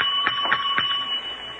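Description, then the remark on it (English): A bell rings with a bright, steady metallic tone, pulsing three times in quick, even succession before the ringing carries on alone and eases slightly in loudness. “I'll ring the bell.”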